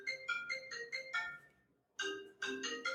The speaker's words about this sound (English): So oddly enough, that was my iPad ringing when my phone rang.